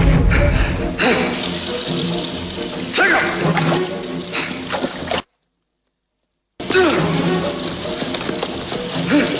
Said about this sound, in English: A dripping sewer tunnel.